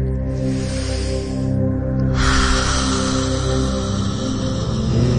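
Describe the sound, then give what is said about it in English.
During a guided breathing class, a long, slow, airy exhale hisses out steadily for about three seconds after a brief pause and a softer earlier breath, over a sustained low musical drone. “And when you are ready, only when you are ready, you release slowly.”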